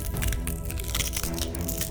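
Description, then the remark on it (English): Dense, continuous snapping and cracking of bones as a transforming creature's leg bones reshape and it drops onto all fours, a steady run of sharp crunches and pops that stays loud for the whole stretch, with no voices. “The bones in her legs snapped and cracked to accommodate the new posture, and she let out another howl of pain.”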